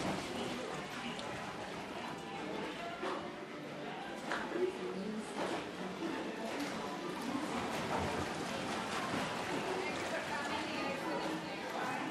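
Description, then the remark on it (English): Steady, dense ambience of a theme park boat ride at Epcot: a continuous watery wash beneath indistinct crowd chatter, with occasional brief knocks and clatters, evenly loud throughout. “Please keep your hands and arms inside your boat and remain seated until it comes to a complete stop.”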